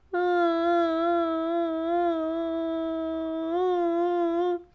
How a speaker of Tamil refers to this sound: குட்டி யானை சாய்னா அழத் தொடங்கியது.